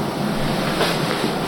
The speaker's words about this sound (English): That's a car.